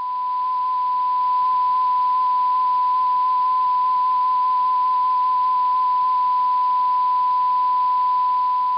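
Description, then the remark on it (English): The Arecibo radio message being broadcast plays as a steady electronic tone that flickers rapidly between two close pitches, giving a faint warbling, beeping pattern over a constant hiss, with no voices. “And just like in that process, you could audibly hear the message being sent.”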